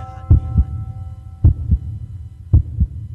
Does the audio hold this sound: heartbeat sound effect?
yes